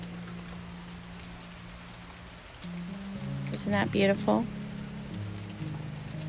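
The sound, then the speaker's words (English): Steady rain hisses outside, growing noticeably louder partway through as a door is opened, with a low hum underneath and a woman briefly speaking over the downpour. “I wanted to open the door and so that you could hear the rain because it's so soothing.”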